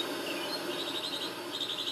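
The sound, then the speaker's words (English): Soft bird chirps come in quick repeated runs, pausing briefly midway, over a steady wash of ambient outdoor noise with no talking. “You see that beautiful bird as you're rocking in the hammock.”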